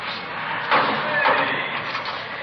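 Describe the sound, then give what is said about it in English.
A heavy metal jail door at the main jail clanks shut with a brief ringing scrape, followed by a second sharper clack of the lock, set against a steady background hiss. “They want to lock that door.”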